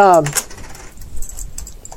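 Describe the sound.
Metal coins clink and jingle lightly in a scattered, irregular run as they are handed out as pay, fairly soft, after a short burst of voice at the start.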